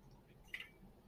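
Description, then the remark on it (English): A single brief, wet sip of water, quiet, standing alone against a soft background hush with no talking. “I got a stupid MS hug kicking in, so I gotta keep sipping water here.”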